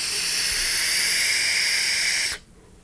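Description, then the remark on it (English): A vape tank, the mouse with a 0.54 ohm coil at 6.5 volts and 80 watts, hisses steadily through a long inhale, a loud airy rush that holds for about two seconds and then cuts off abruptly into near silence. No one speaks. “This tank just rips so hard.”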